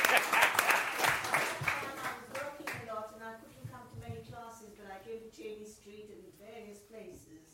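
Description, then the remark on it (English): An audience at a talk bursts into loud, dense clapping for an audience member during the question session, lasting about three seconds, then the applause thins out and fades under a person speaking. “round of applause.”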